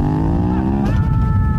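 A car that can cross bogs revs hard and accelerates, its engine pitch climbing in a steady whine before shifting up, loud with a rough rumble underneath.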